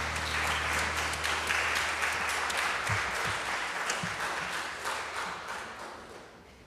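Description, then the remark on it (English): An audience claps steadily at the end of a morning service, applauding the man who led it; the dense patter of many hands holds strong before gradually tapering off toward the end. No one speaks over it. “If we could have one last round of applause for him.”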